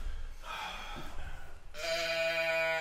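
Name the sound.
goat bleat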